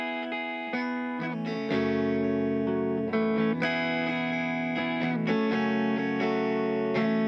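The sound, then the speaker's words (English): A psych folk track: distorted, effects-laden electric guitars play a sustained, chiming chord progression with changes every second or so, swirling and steady at a moderate volume, with no singing. “Really great psych folk track. Some really fun guitars, some fun distortion, and some really great lyrics.”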